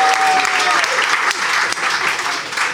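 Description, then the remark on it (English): A crowd breaks into steady, loud applause with dense clapping, and a faint whistle or cheer briefly rises above it near the start. “Give her a round of applause, she needs it.”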